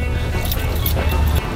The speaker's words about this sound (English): Okay. All right, here we go. Keys. Brake. Yeah, put the brake on, please.